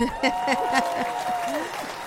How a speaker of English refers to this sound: It's kind of fun to have applause the minute your name is said. Kind of like that. I may have to take that home with me. That was really fun.